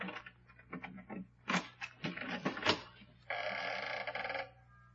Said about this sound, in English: Now, where did I put that key? Don't tell me you're not going to pick the lock. Holmes, you're losing your grip. Quiet.